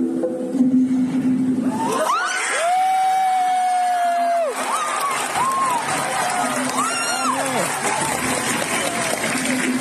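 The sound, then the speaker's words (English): A large audience erupts in loud, sustained cheering as Sabine, Hera and Chopper from Star Wars Rebels appear in live action on screen for the first time in the Ahsoka trailer, with high whoops and shrieks rising above a dense roar of voices and clapping for the full length. “Here's the crowd's reaction to seeing Sabine, Hera, and Chopper for the first time on screen.”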